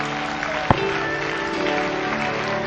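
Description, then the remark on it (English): A church audience claps steadily and warmly as a woman comes up to be led in a prayer, the dense applause filling the church at an even level with one sharper clap standing out early, and no one speaking over it. “Come on, let's give her a great clap as she comes up today.”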